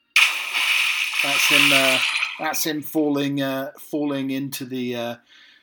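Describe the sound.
A loud splash bursts out and washes on for about two seconds as a person falls into water, a sea, pond or lake, with raised voices calling out over it and continuing afterward.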